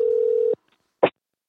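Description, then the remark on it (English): A single steady electronic ring tone from a phone line, heard as on an outgoing call, lasting about half a second, followed by a brief click-like burst and then silence. “It's ringing.”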